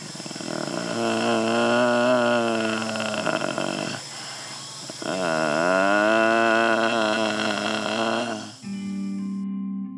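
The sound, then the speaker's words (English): A man with a brain injury, lying in a nursing home bed, hums in long, deep, droning tones through a tracheostomy tube: two sustained, strained hums with a brief breathy pause between them, loud and rasping with a wavering pitch. “He's making a deep humming sound.”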